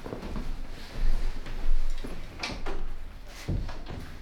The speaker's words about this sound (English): Close the door.